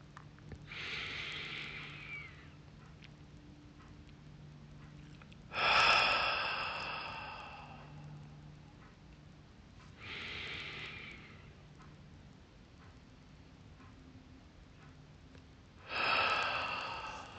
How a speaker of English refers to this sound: Breathe in through your nostrils. Hold for 2 seconds. And exhale through your mouth and hold for 2 seconds.